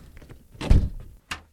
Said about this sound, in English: Let's see if this door opens.